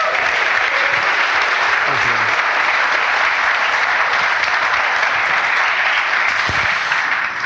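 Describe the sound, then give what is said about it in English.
Sustained, loud applause from a large audience at the close of an All In Business show recording fills the whole stretch, a dense steady wash of clapping with no pauses and no one speaking over it. “Big round of applause, please.”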